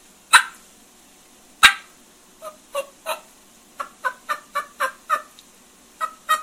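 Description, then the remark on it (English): A turkey call imitates a hen's fly-down cackle as she comes out of a tree: two sharp opening notes, then a quick, uneven run of about a dozen clucking yelps, clear with no talking. “It's really interesting because a lot of hens will kind of work right into a fly-down cackle.”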